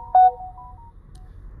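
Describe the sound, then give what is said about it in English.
A short electronic phone notification chime: a bright, clean tone that rings out briefly and fades, followed by a faint lingering note over a low background hum. No one speaks. “These notifications keep coming in.”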